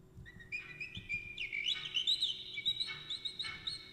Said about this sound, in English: So I'm hearing whistling.